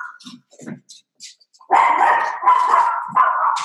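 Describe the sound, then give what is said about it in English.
A dog barks loudly, three sustained, harsh barks in quick succession after a few quieter scattered noises. No one is talking. “I have a dog.”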